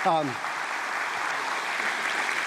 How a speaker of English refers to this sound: Give them a little bit of grace. Actually, give them one round of applause before we even start for standing on the stage.